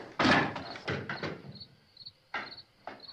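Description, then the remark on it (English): Loud wooden knocks and clattering thumps as a table is taken apart, several irregular bangs with short pauses between them, and faint insect chirping in the quiet gaps. “As he's taking the table apart.”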